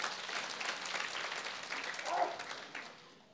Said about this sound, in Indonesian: Boleh tepuk tangan bagi Tuhan.